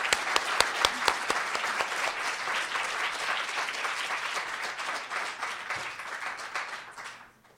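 A crowd bursts into sustained applause, many hands clapping densely and steadily for several seconds before the sound quickly fades away at the end.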